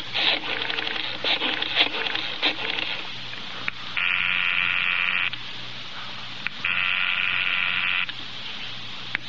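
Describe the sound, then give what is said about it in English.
A telephone is dialed with a rapid series of clicks, then two long buzzing rings sound with a pause between them, clear, with no voices. “I asked if I could use his phone.”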